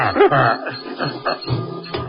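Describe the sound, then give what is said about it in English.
A door to the main control room being opened by Bobo, a sustained mechanical grinding and rumbling lasting a couple of seconds, fairly loud, with uneven surges and no voices. “Open the door, Bobo.”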